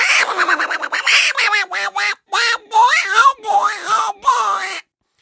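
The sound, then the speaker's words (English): A voice doing a squawky, garbled Donald Duck impression, a rapid run of raspy quacking syllables in bursts with brief gaps, loud, lasting about five seconds. “An unnecessary Donald Duck impression.”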